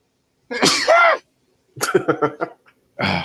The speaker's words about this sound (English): That's a gangster sneeze.